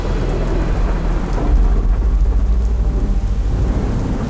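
A steady downpour of rain with deep rumbling thunder rolling underneath during a summer evening storm, loud and continuous throughout, with no voices.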